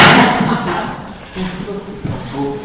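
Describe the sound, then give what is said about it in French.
Folding chairs are folded in two and stacked, giving a run of clattering knocks and dull thuds, with faint murmuring voices underneath. “Les chaises, ça se plie en deux.”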